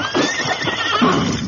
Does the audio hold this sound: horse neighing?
yes